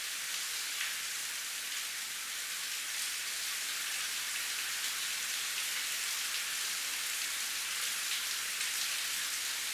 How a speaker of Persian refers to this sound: دیشب در تهران باران بارید. 1 دقیقه به صدای باران در تهران گوش کنید.